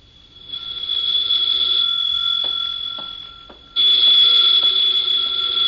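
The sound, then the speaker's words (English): A telephone rings in two long, shrill bursts, a steady high-pitched jangle with a brief dip between rings and no voices over it. “Then there was the phone.”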